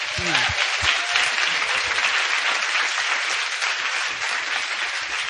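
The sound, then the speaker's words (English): An audience breaks into steady, full applause as a clap offering to God for the missions testimonies just shared, a dense wash of many hands clapping at an even loudness for several seconds, with a brief voice audible at the very start. “Oh, let's give one more, clap offering to God for the missions testimonies that were just shared.”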